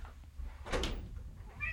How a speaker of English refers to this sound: God dang these cats.